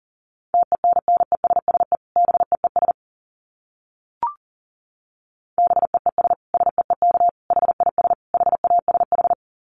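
Fast Morse code at about 40 words per minute: a steady mid-pitched tone keyed in rapid dits and dahs, in two bursts separated by a pause with a single brief click.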